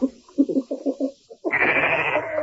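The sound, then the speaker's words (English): A goat bleats twice: first a quick run of stuttering, wavering pulses, then a longer, loud, strained bleat that holds steady to the end. “Oh, there, goat.”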